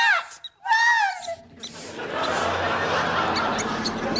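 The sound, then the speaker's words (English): A few shrill, sliding squeaks and a wavering yowl ring out as an angry cat chases 15 squeaking mice in a box connected to a fan, then give way to a steady, loud rushing whir of the fan being driven that continues to the end. “I now simply insert one angry cat. The cat gives chase to the mice, thus moving the fan.”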